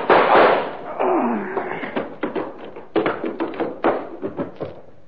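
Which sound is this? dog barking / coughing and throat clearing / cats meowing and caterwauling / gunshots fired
gunshots fired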